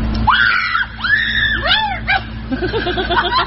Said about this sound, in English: That's a girl trying to rescue a squirrel from a kiddie pool. Let me save you, she screams.